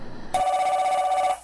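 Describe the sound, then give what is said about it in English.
A single ring of a telephone: one loud, steady, slightly trilling electronic burst lasting about a second, standing alone, then cutting off abruptly. “we have another caller. Ring. The phone is ringing.”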